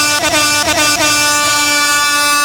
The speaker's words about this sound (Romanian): Celebra goarna de la Vibe FM